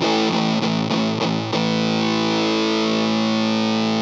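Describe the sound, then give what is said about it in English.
Distorted electric guitar, a Gibson Les Paul SG with two PAF humbucking pickups, played loud: five quick, evenly spaced chord stabs, then one heavy chord left to ring out and sustain until the end, with no voices. “Gibson Les Paul SG”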